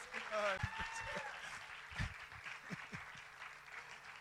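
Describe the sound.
An audience at Urban Church in San Diego, California, applauds steadily for several seconds to welcome a visiting pastor from Uganda, a dense wash of clapping with a few voices and cheers rising over it near the start, then gradually thinning out.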